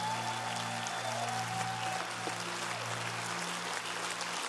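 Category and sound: crowd, audience cheering and applauding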